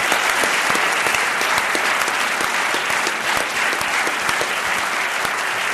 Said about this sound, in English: That gift to them is because of all of the donors here. So they will remain anonymous for the moment, but I want to give a round of applause to everybody who's doing that.